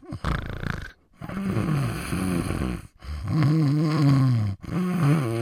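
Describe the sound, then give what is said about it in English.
Loud, droning snores from about ten passengers in a business class train carriage on the early morning 0700 departure from Beijing South, four long rumbling breaths with a wavering, groaning pitch, separated by brief silent pauses. “On the early morning service, the 0700 departure out rather from Beijing South, it's like a sleeping car.”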